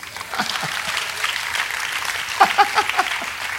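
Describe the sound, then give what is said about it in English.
Scattered audience clapping, a loose patter of claps that grows a little denser and louder toward the end, with a few sharper individual claps standing out. “And I know somebody is wondering, why are we clapping?”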